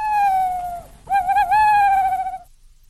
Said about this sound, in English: Is it an owl? It is an owl.